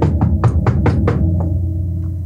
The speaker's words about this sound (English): Well, can you, like, hear me knocking?